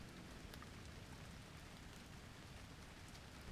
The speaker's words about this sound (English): The microphone hasn't yet been invented to effectively record nature's most elementary sounds. Wind. Rain.